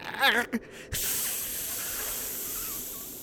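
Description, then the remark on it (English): A man with an entirely frozen face hisses through his teeth, a long, steady, airy hiss lasting a couple of seconds, preceded by a brief wavering vocal warble and a short pause. “Why is your companion's face entirely frozen, and why is he hissing?”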